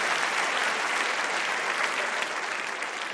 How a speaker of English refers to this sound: I'd like to give a round of applause to all of them.